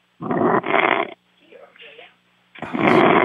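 A radio show caller on hold snores loudly and raspingly through a muffled, tinny phone line: two heavy snorts back to back, a softer wheezy breath, then another loud snore starting up.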